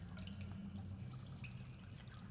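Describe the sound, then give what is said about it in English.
Quiet water dripping and trickling down inside a well, echoing, over a steady low rumble that runs throughout, with no voices. “You hear nothing but the sound of water and the echo of your own breathing, the creaking of the rope.”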